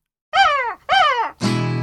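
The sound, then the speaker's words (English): A crow or raven caws three times in close succession, loudly. The first two calls are drawn-out, falling squawks, and the last is a harsher, raspier croak. No one speaks. “Yes, that's my bird, Nick, and I guess I know a bird when I see one.”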